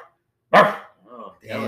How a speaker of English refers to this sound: Are those the dogs again?